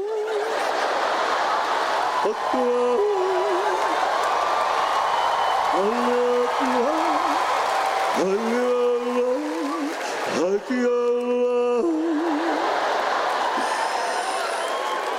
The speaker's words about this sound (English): You're clapping.